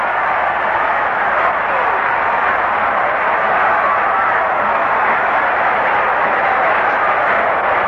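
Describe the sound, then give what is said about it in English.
A large baseball crowd roars steadily as the batter lines a base hit to center field off pitcher Hamilton, a dense, continuous wash of cheering that holds at the same loud level throughout, with no single voice standing out. “And listen to the crowd. They eat it up.”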